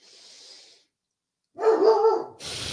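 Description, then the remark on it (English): A dog, waiting to go for its morning walk, gives one loud bark, slightly drawn out with a whiny edge, between stretches of soft hiss and background noise. No one speaks. “For my dogs, who are so patiently waiting to go for their morning walk because we're being a little lazy this morning.”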